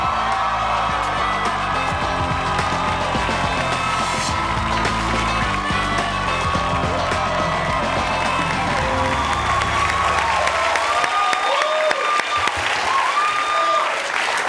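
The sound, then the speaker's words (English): Loud, sustained applause from a large talk-show audience welcoming a guest actor, with excited high-pitched screams and whoops rising above it, while a band plays underneath, the music fading toward the end as the clapping continues. “The pitches of the screams are not usually that high, although I feel you're used to that.”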